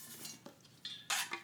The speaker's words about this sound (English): All right. Let me fill my cup.